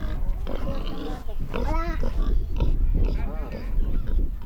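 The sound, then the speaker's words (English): A gigantic 12-year-old pig grunts repeatedly, low and rough, while a 7-year-old kid rides on its back, over a busy outdoor background with voices murmuring. “The second best thing was seeing a 7-year-old kid riding on the back of a gigantic 12-year-old pig.”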